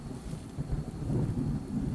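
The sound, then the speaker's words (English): A steady, rumbling storm wash of rain and wind fills the space, with deep low-end roaring that swells and gusts throughout. No voices are present. “A gust of wind whipped a sheet of raindrops across Joseph's face”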